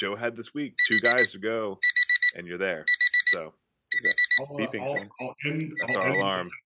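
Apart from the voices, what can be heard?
alarm clock ringing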